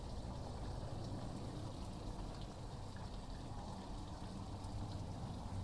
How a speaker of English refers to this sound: Noticing my fountain in the backyard. Noticing the water that's flowing outside of the fountain onto the grass that's starting to fade, starting to change.